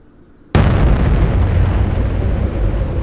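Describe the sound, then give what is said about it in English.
A quiet moment is shattered by a sudden, massive nuclear explosion on the pyramids that hits loud, then rolls on as a deep, sustained rumble that slowly fades. “There is a large explosion.”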